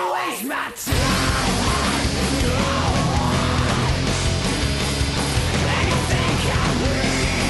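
A raw, sustained screamed vocal track tears over loud, dense rock instrumentation at the end of a rock song, kicking in abruptly after a brief quiet moment and staying intense throughout.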